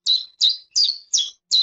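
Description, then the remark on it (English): A chiffchaff sings a steady series of five bright, high-pitched notes, evenly spaced about every four-tenths of a second, each a short descending chirp of similar loudness with no talking; only the first second is a real recording, the rest is AI-generated. “So somewhere in the third sheep, AI takes over and starts to speak chiffchaff.”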